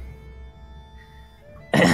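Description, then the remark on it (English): A single small, short cough from the character Theodric bursts out near the end, after a stretch of quiet low hum. “Charity, yeah, you walk up to Theodric, who coughs just a bit, and he kind of squints his eyes open.”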